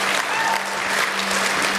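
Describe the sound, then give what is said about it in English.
A church audience clapping their hands and shouting to God during a morning service, a dense, steady wash of applause at a fairly loud level, with a faint low hum underneath. “You want to clap your hands, all you people, and shout?”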